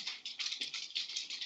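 Rapid keyboard typing as someone searches Google for the answer to a Beatles trivia question, a quick steady run of crisp, bright key clicks at moderate-to-soft volume, with no voices over it.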